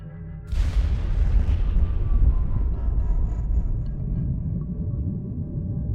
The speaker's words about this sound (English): The sound of the explosion echoed across the West African landscape, wildlife taking flight.